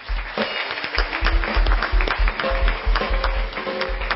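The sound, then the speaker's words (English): An audience claps together after a prayer, giving a clap unto the Lord, in a loud, dense wash of applause that runs steadily throughout, with a regular low thumping pulse and faint sustained tones underneath. “Let's give a clap unto the Lord.”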